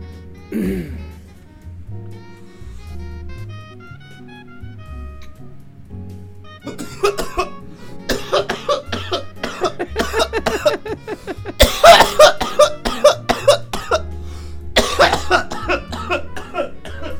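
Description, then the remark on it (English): A prolonged coughing fit after a quiet inhale, with harsh, repeated hacking coughs building in intensity over several seconds, loud, while low background music plays throughout. “I'm not ready to cough like that shit.”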